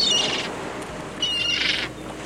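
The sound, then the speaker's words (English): Two loud gull calls, each a harsh, high-pitched squawk lasting about half a second, separated by a short pause. A faint outdoor hiss runs underneath, and nobody speaks. “and on today's episode, we're talking about seagulls.”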